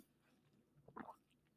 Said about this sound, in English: That sound happens because I can't always close my mouth because that's a Bell's palsy thing. So when I go to drink out of straws, sometimes my mouth makes that noise. It's very irritating.